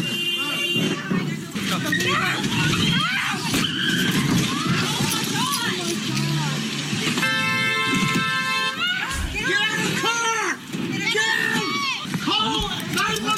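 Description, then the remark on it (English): A car revs and tires squeal sharply in a chaotic scene as the driver repeatedly reverses and drives forward, hitting parked cars in a grocery store parking lot during an attempted carjacking. A sustained screech comes midway and a low thud follows, while a crowd shouts and yells loudly throughout. “She kept backing up and going forward and hitting more and more cars each time.”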